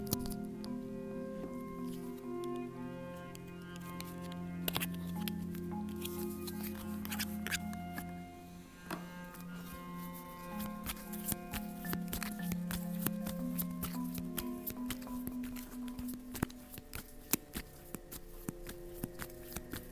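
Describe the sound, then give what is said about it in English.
Tarot cards from the Light Sophia Tarot deck being shuffled and drawn, with repeated crisp snaps and riffling flutters over a soft sustained musical drone, no talking. “Now I am going to begin shuffling and drawing cards out from the Light Sophia Tarot deck.”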